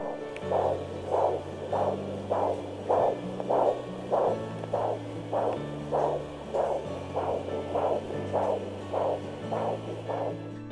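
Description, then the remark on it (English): A fetal heartbeat at 6 weeks and 4 days on ultrasound: steady, rapid whooshing pulses repeating about twice a second over a low electronic hum, with no one speaking. “Here's that heartbeat at 6 weeks and 4 days.”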